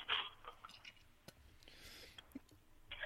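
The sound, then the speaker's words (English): A few scattered clicks and clinks of three coins dropping into a toll machine, faint and spaced apart, with soft rustling bursts at the start and end and no talking. “Three coins in the fountain, and I get a green light.”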